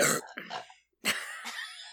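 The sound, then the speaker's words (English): Two loud burps from two people, limoncello-flavored, in quick succession, separated by a brief silent gap; the second is longer and more drawn out, rumbling on for almost a second. “That was a limoncello scented and flavored burp from both of us.”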